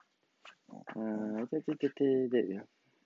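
A dog whimpers in a short run of high, drawn-out whining cries, some clipped and some held, with brief pauses between them and no other sounds around.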